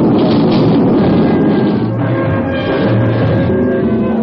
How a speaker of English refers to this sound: The freighter Taiwan Trader is somewhere in the South China Sea, taking the battering of a sudden and violent storm.